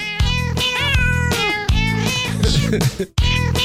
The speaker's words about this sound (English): Oh, I love it where they purr. Hold on. Here it is. Here it is. Oh, no. Not there. There's a section of the song where they break it down with purrs. It's pretty cool.